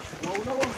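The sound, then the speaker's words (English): Footsteps of dozens of hikers crunch along the trails of Mulanje Mountain in Southern Africa in an uneven, overlapping shuffle, with faint voices of people talking in the background. “These are the sounds of footsteps of dozens of people skating through the tracks of Mulanje Mountain.”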